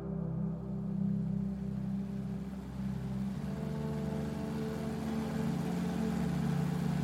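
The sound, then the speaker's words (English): Helicopter blades and engine produce a steady, loud, low droning hum with layered tonal harmonics, shifting slightly in pitch partway through and continuing without any voices. “I heard Agent Ramsey's voice question over the helicopter blades.”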